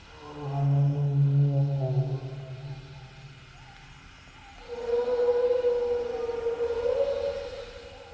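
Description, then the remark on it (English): A brachiosaurus bellow from Jurassic Park, built from whale song, donkey sounds and other animals: two long, loud, moaning calls, the first deep and rumbling, the second higher and drawn out with a slow rising swell. No one speaks. “sound designer who came up with the iconic sounds you've come to know and love from Jurassic Park and its sequel, imaginatively combining whale songs, donkey sounds, and other unlikely animals to create the bellow of a brachiosaurus.”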